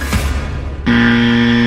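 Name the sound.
game show buzzer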